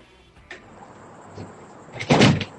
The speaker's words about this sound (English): The lady opening the door.